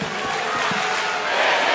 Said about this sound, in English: Fucking crowd just did every chant that he did.